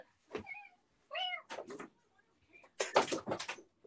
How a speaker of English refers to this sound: One second, my cat is trying to open my door. Of course.